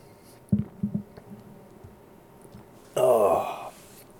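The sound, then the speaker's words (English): Beer being sipped in Northern California: two or three soft, low gulping swallows, then a brief pause and a louder, breathy voiced exhale of satisfaction lasting under a second. “I just need to take a second to sip this beer.”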